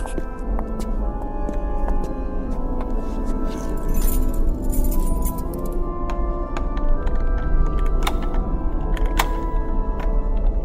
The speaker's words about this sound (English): Eventually we came upon a large wooden door. I stepped up to it and pulled out an old brass key.